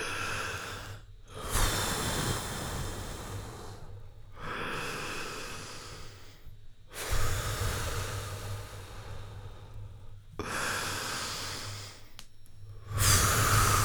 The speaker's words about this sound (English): Can we do a little breathing exercise? Let's breathe. Let's take 3 deep breaths in. Okay.